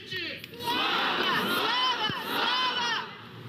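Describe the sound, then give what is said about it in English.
A large crowd shouts and chants outside the Russian embassy on the evening before Russia invaded Ukraine, many voices merging into a loud, sustained roar that swells in waves with no single speaker standing out. “This was the sound outside the Russian embassy on the evening before Russia invaded Ukraine a week ago.”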